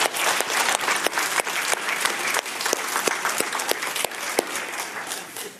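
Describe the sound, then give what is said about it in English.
A church audience applauds steadily, many hands clapping in a dense, fairly loud patter with sharp individual claps standing out, sustained for several seconds without talking. “Well, let's give them all a good round of applause here.”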